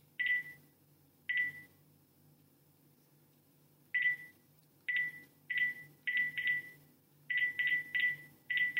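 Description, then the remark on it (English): Keypad tones from a landline phone being dialed with a mobile number: about a dozen short, clear electronic beeps, two spaced apart, then a pause before quicker bunches of presses, fairly loud over a faint hum. “So I'm going to type in my number on my landline phone now.”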